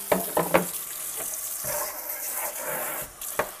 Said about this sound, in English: Oh, I guess I still need the water running.